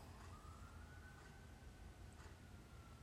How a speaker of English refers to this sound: Apparently, there's... fire truck and an ambulance going on outside. Don't know how close they are, but I hear them passing by, so it was weird.